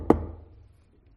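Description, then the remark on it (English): A single dull knock on a house door rings out, its low thud fading quickly into quiet with no voices. “We knocked on another door.”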